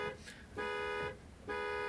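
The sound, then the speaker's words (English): A car horn honks three times in a steady rhythm, each blast a loud, sustained tone lasting about half a second, with short gaps between them and no one talking. “Okay, next you have three honks.”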